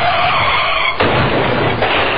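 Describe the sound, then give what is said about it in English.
A loud car tire skid screeches for about a second, then a heavy crash of noise hits and carries on, with another jolt of impact just before the end, as in a car accident. No one speaks. “Nobody wants to be in a car accident, but it can happen to even the most careful drivers.”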